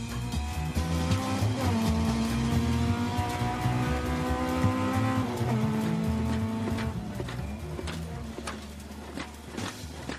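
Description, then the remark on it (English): A rally car roars past at speed on a gravel rally stage in Fermoy, in good weather with no fog, its engine revving hard and rising in pitch through gear changes, with gravel crunching and tyres scrabbling across the loose surface, loud with no talking. “He's travelling faster, taking a bit more chance with the car.”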